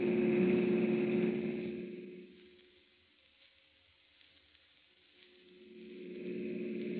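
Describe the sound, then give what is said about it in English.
A police officer's car engine drones loudly as it is driven as fast as it can go, dipping to a quieter hum midway before roaring back up; no voices are heard. “I'm driving as fast as I can”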